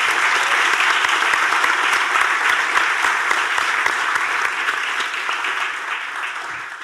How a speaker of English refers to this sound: So, can you please give our panelists a warm applause?